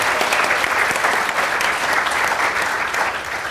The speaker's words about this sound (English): We're not just taking suggestions from them, we're taking the suggestions from our wonderful audience here at the Science Gallery in Dublin. Give yourselves a big warm applause.